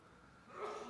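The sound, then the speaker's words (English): One short, breathy sneeze bursts out, soft, with a rush of air rising sharply then trailing off. No talking. “Bless you.”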